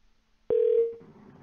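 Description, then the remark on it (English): A single steady electronic phone ringing tone sounds abruptly, holds for about half a second, then fades into a faint low background hum with no one speaking; the call goes unanswered and never connects. “No one is answering their phone, guys.”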